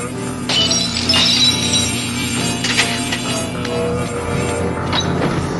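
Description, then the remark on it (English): Wine glasses at a feast shatter amid a steady high ringing tone, like a humming whistle-tone voice, with several bright crashing bursts of breaking glass scattered across a few seconds at a moderate level. “And it shatters the wine glasses.”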